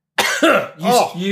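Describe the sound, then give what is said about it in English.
A person coughs twice in quick succession to clear something lodged in the throat, loud, harsh throat-clearing bursts with a rough, raspy edge, the second cough slightly longer and trailing off. “gets lodged in your throat. Try coughing.”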